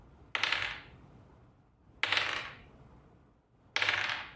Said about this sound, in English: I'm going to roll a 20-sided dice here three times.